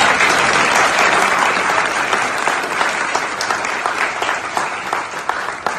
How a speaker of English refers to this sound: So just clap it up